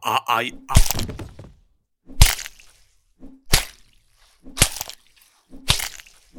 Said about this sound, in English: The woodsman beat the wolf's skull in until it transformed back into Anthony Hopkins, and Tom was able to crawl his way to freedom, where he was happily reunited with his parents again.